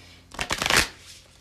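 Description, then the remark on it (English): A deck of cards being shuffled for a future-predictions reading, a quick burst of crisp riffling flutter lasting under a second before fading out. “Let me try to shuffle these future predictions for my Virgo placements.”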